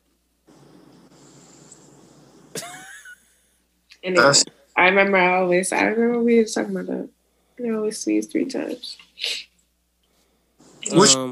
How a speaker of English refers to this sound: I always sneeze three times.